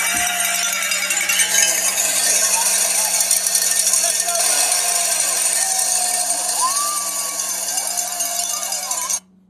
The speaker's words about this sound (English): These cowbells add to the yelling in the stadium and make Davis Wade Stadium the loudest place on Earth.